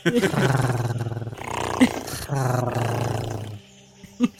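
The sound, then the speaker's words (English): A person voices a rough, throaty, slightly gagging and retching tiger-like chuff into a microphone in two long, rumbling bursts with a short break between, fairly loud, ending in a brief breathy puff. “He's slightly gagging, retching tiger that's trying to chuff.”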